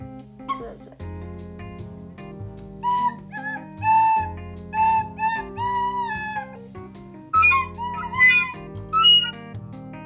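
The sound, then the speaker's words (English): Shrill, screeching flute notes sound in a string of sustained, wavering high tones and short bursts over a steady low hum, growing piercing toward the end. “Sorry, that was a screeching noise.”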